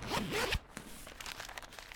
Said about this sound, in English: You open your rucksack and check your passes and documents are all there for the 5th time.